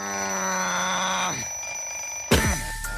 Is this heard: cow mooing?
no